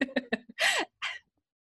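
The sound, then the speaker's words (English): A couple of short, harsh coughs, preceded by a few quick voiced throat sounds, then silence. “I have to cough.”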